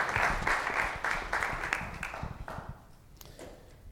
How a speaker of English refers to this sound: So I would like to applaud you. Thank you.